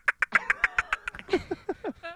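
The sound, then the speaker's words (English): A person imitates a squirrel or chipmunk with a quick run of about a dozen sharp, chattering chirps, loud, the final squeaks sliding downward. No one speaks. “This is what I like to call the squirrel or chipmunk.”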